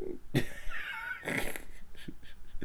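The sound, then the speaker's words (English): Heavy, wheezing breaths from an overweight person, a sharp gasp followed by strained, raspy exhales with a whistling edge, repeating over a few seconds. “I'm fat. I gotta breathe.”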